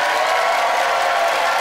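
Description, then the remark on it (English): An audience applauds in a dense, steady wash of clapping that holds at a loud, even level for the whole stretch, with no single voice standing out, voting by applause in a debate for the side arguing against spas. “By applause, who agreed with Juliana that a day at the spa never has a truly happy ending?”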